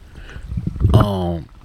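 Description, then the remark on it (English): Steady rushing water flows in the background, a low continuous wash, and partway through a voice cuts in with a brief drawn-out vocal sound over it. “Yeah, and I hope y'all hear that water in the background too. I'm over here by the water.”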